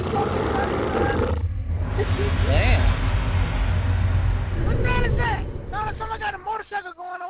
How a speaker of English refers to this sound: What's that? Is that? No, someone got a motorcycle going on.